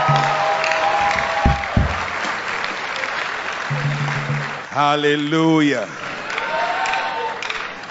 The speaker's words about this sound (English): Keep clapping.